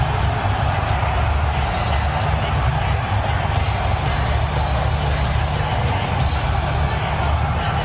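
A large crowd roars and cheers steadily while loud rock music with heavy bass pounds underneath, the whole mix dense and continuous for the full stretch.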